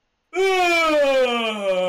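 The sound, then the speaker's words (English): A voice acts out a friend's exaggerated yawn, a single long, loud vocal drawn out with rich harmonics, its pitch sliding slowly downward over nearly two seconds after a brief silence. “To be fair, the yawn was really exaggerated.”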